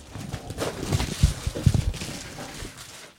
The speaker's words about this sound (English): I hate tearing these because I'm afraid I'm going to rip something. A package inside another package.